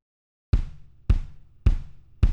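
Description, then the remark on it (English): Four punchy kick drum hits land at a steady, even tempo after a short silence, each a deep low thump with a quick attack and a short decaying tail, with no other instruments or voices. “Now let's do a little rhythm counting. Listen to the kick drum.”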